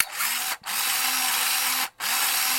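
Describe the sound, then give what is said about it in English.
A malfunctioning film camera mechanism whirs loudly in three steady motorized runs, each briefly cutting out before starting again, with no voices. “Now you can hear this camera's problems.”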